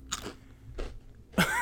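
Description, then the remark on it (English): Three crisp crunches of someone biting into focaccia crackers, spaced unevenly, with the last bite loudest and sharpest. No talking. “Can you give me a second to finish my focaccia crackers?”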